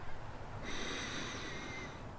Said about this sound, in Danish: og lad luften komme helt ned og helt ud igen. Tag en dyb vejrtrækning til. Og mærk hvor rart det er at give slip.